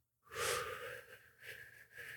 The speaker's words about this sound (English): We're going to breathe in.